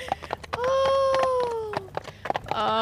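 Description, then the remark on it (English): A run of heavy, irregular stomping thuds, fairly loud, with a drawn-out whiny, cry-like tone sliding downward through the middle and another rising at the end. “we gotta cue in the stomping feet again.”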